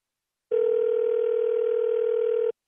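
A single steady electronic ringback tone from a telephone line calling a cell phone that goes unanswered, lasting about two seconds at an even, moderate level before cutting off abruptly, with no voices.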